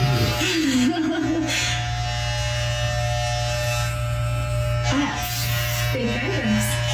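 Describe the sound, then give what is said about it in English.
Steady electric clippers buzz continuously throughout as a woman buzzes off her hair and eyebrows, a loud hum with bright harmonics, while faint voices chuckle and murmur briefly underneath. “we actually have audio of her buzzing her hair and her eyebrows at the same time”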